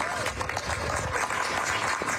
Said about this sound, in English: Justice Ketanji Brown Jackson received a round of applause.